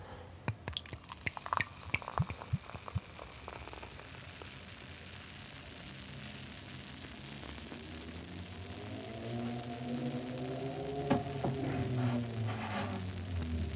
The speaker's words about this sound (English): So the beer is, of course, Orval. Let's crack it open. This sort of super iconic Belgian ale coming in its skittle-shaped bottle with its trademark glass, which I have happily got the Orval goblet or chalice, which I'm about to pour into.